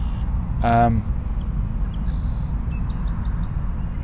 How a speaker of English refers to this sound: As I look around me now, I'm seeing, as you can hear them too, red-winged blackbirds.